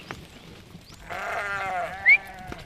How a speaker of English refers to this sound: These ewes about due for a wee shift.